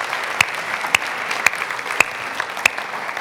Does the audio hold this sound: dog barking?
no